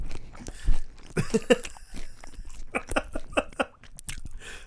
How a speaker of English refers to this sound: I'm gonna be real. Chewing noises don't bother me. This is bugging me a little bit. Is it got right in your ear? Yeah.